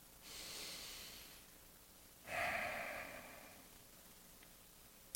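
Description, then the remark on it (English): Two long, deep breaths of a person, a breathy inhale followed by a slower, louder exhale with a slight nasal snort, no talking. “The only sounds are …'s breathing, which occasionally includes really deep breaths.”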